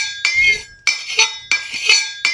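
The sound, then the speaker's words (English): A fork scrapes across a plate in four repeated strokes, each a shrill, grating screech, with brief gaps between them and no voices. “Yes, that's silverware on a plate.”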